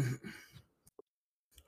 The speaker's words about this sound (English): Shit, I'm trying to do it, but my cat's sniffing the microphone. Hold on.